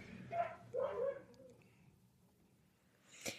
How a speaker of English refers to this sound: My dog is going crazy right now. Mm-hmm. And it's every single time that we do a podcast.